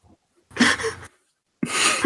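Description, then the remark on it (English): Two sharp, noisy sneezes, about a second apart, each a sudden loud burst of breathy hiss. The second cuts off at the end, and no one speaks. “God bless you”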